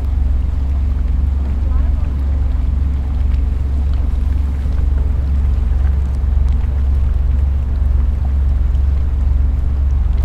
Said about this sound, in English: Ship's just about to go through some ice, so I'm going to record now. So the ice is thinning out now, but bigger bits, so you get a different sort of sound.